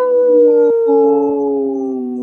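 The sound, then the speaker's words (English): Human voices imitate a wolf howl on the radio show Native Roots Radio: sustained, overlapping tones that slide gently downward, held loud for about two seconds with no talking. “did not howl”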